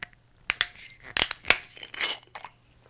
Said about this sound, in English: Okay, let's open it up and have a taste. Fresh screw cap.